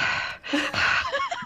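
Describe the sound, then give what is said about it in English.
A voice imitates heavy, creepy breathing into a phone, a loud, airy rasp of drawn-out inhales and exhales over about a second and a half, with some faint voiced tones near the end. “And it's someone breathing, like, heavily into the phone in that, like, creepy, like”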